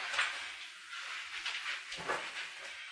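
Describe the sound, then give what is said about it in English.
A door slides shut all the way with a low, breathy scraping sweep, ending in a soft muffled thud about two seconds in. Fairly quiet, with no voices. “I'm gonna close it all the way.”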